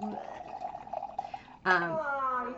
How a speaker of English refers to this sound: sorry as I pour my zombie.